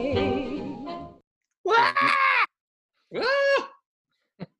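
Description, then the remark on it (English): A man's voice imitates the pained screaming of football player OBJ when he got hurt: a wavering, moaning cry followed by two shorter anguished yells, loud, with brief silences between and no other sounds. “That's what OBJ was screaming when he got hurt last week.”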